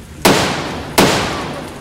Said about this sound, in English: He watches the trees, scanning for any movement. He spies a figure as it darts between the two trees. He leads it with his Winchester and then fires twice.